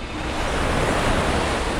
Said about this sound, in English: With my eyes closed, I was in the process of holding my eighth chakra when everything suddenly went quiet and the sound of waves filled my ears.